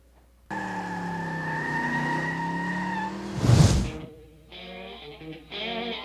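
The Farm Truck, a 1970 Chevy pickup built for street racing, revs hard with a steady, droning whine, then roars in a sudden loud burst with a screech of tires before settling into choppy, throaty revving, with no talking.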